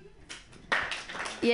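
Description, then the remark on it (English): A short burst of scattered audience clapping at a stand-up comedy show, from those not dating, a brief patter at first and then a fuller, uneven rattle of hands that keeps going to the end. “Clap your hands if you're not dating.”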